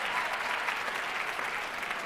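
A crowd applauds steadily, dense overlapping claps forming a continuous wash of sound at even volume throughout, with no voices rising above it.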